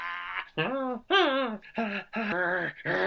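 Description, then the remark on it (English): A dog whimpers in a string of five or six wavering whines, each pitch bending up and down, fairly loud with only brief pauses between them. “Well, you are a very clever doggy.”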